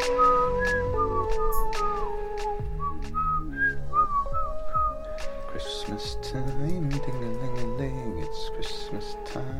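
A person whistles a bright, bouncy melody, following along with a Christmas song playing underneath with a steady beat and bass.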